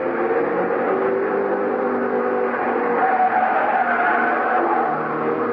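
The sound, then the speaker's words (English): Loud, sustained roar of test cars thundering by on the track at the Allied Motors testing grounds, engine noise filling the whole stretch without a break and with no voices. “They were still testing cars, but the people watching the test winced as the cars thundered by, just as if they expected the autos to fall apart any second.”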